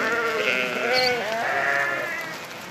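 A goat bleats in one long, wavering, nasal cry that fills the whole moment, loud, then trails off slightly toward the end. No one speaks.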